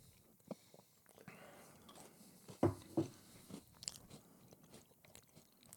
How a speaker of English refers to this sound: Oh, I just ate the whole cookie. We got more.